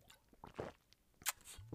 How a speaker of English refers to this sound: Here, excuse me, I gotta get a drink of water.